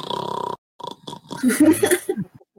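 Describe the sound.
A voice imitates snoring: a buzzy, rattling drone with a fluttering pulse, a pause, then short breathy snorts and a louder, rough gurgling snore before it trails off.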